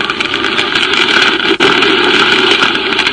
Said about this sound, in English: The fire engines and police cars streaking through the streets toward the Olympus Piano Factory told me which way to head.